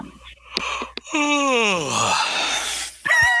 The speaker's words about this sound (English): You sound pretty bored already. That was a real yawn, too. I didn't manufacture that.